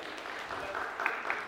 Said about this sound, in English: Thank you, ladies. You guys can give them a hand. I feel like our church always needs permission to clap, but you don't. You can just clap. It's all good.